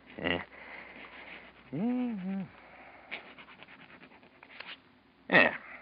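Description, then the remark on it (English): A pen scratches across paper in a few short, separate strokes as a name is written on a piece of paper, fairly quiet, with a brief murmured vocal sound partway through. “Here, now, use my pen. Hmm? Go on, now. Write your name on this piece of paper.”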